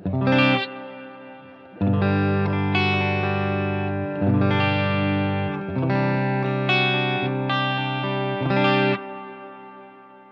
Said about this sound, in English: Now let me turn the tone all the way down, and I'm going to put the reverb volume at about noon so you get a little bit more reverb, you can hear it a little better.